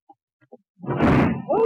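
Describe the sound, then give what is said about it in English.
A few faint taps, then a new door topples over onto a person with a loud, heavy crash and rattling clatter, ending as a startled voice cries out. “Get me out from under this door!”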